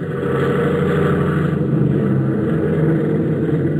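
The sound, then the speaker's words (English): The engine of a Conestoga airplane being tuned up revs, a loud continuous roar with a throbbing low-pitched pulse that holds steady for the whole stretch, with no voices over it. “Rev up again.”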